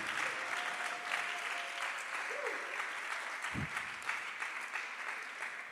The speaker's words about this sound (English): Everybody stand and clap your hands.